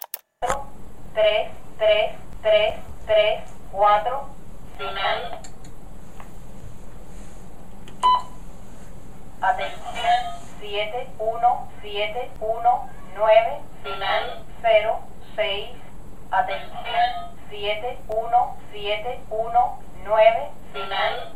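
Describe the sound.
A numbers station transmission from a Sprach Morse generator: a synthetic voice recites short digits in a steady, clipped rhythm, pauses briefly, then resumes, over a constant low hiss.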